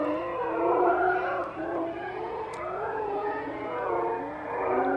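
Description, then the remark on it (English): A sped-up NASA space recording: a dense, continuous wash of warbling, wavering tones that swoop and rise in pitch over a low rumble, steady and fairly loud throughout, with no one speaking. “We probably just got kicked off YouTube for playing copyrighted NASA material.”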